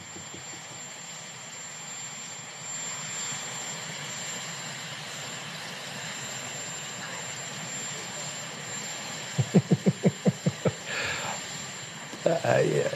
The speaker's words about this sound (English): Joe Biden got on the helicopter with Jill and picked a flower for her, although it wasn't quite a flower.